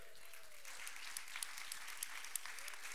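An audience claps in a steady, dense round of applause, many hands blending into a continuous crackle with a few sharper claps standing out, at a fairly quiet level.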